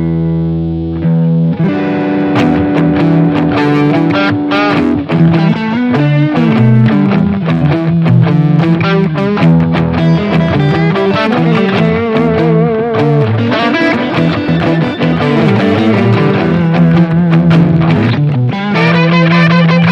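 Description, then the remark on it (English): Two overdriven electric guitars play together in a steady, loud riff, one panned slightly to the right, their gritty distorted tones blending into one thick sound with a dense, driving rhythm and no voices. “Now, both of you guys, that sound that you guys were playing that you had that was similar, just play together just a little bit so they can hear how it blends well.”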